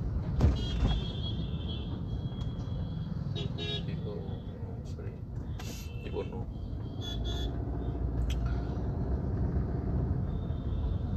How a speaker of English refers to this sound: And I'm driving through heavy traffic, but I'm feeling so much at peace.